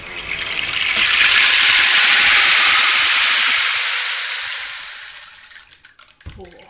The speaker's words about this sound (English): Yeah, but it's this, a rain stick is, it's just a stick, but if you tip it upside down, it makes this noise. It's quite nice.